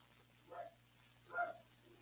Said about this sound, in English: Oh, can you hear my dogs? Yeah. Feisty little wiener dogs. Sorry. Cute little wiener dogs. They're clear upstairs.